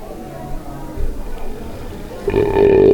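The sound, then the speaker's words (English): A loud belch: a low, rumbly start that swells into a strong, drawn-out burp, growing loudest at the very end. “rating them with these suds ratings, plus our signature belching sounds”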